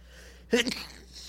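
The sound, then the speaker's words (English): A single quick sneeze bursts out sharply, a short breathy explosion that fades fast into quiet. “Gesundheit.”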